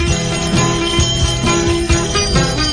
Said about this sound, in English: Can you hear the ship's bell ringing as he sails into the bay?